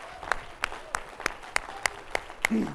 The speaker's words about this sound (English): If you believe it, would you clap your hands to the Lord?